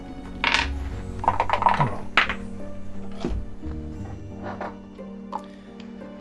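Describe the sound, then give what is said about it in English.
Dice rattle and clatter across a hard surface in a few quick bursts of sharp clicks and knocks as players re-roll dice in a betting dice game, fairly loud, with no one speaking. “Now you've had that second round of betting, you can each select one of your dice to re-roll.”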